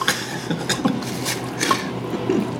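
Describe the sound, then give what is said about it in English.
Beer pours steadily into a glass, a bubbly, fizzing wash punctuated by small drips and splashes over a few seconds. “All right, this is a good pour.”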